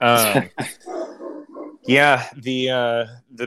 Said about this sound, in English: So, sorry, dogs are just going crazy.